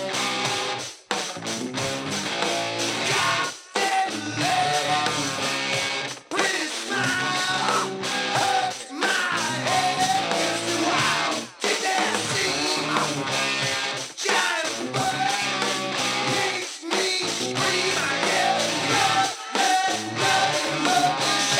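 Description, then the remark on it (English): A loud rock song plays with a piercing, high electric guitar wailing over driving drums and dense distorted backing, sustained and energetic throughout with a few brief drop-outs. “Listen to that guitar. I mean, I know, it's screaming.”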